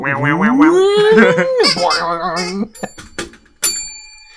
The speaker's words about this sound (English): Oh, dang. I need to actually clean this bell. It just got stuck.